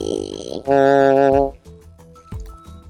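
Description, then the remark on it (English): A drawn-out yawn: a breathy, rising vocal onset swells into a loud, sustained groaning tone that slides down and fades, followed by faint murmuring voices. “And you're yawning.”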